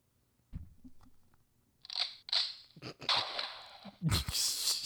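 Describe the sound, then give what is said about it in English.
Loud crunching of someone chewing a bite of crispy Nashville hot fried chicken, with several wet, crackly bursts that grow denser toward the end after a quiet start. “And I'm gonna make you go first, as I typically do, so I can take another bite of this Nashville hot chick, which has no heat.”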